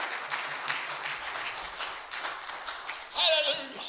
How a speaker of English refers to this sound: Give him a hand clap of praise if you believe that.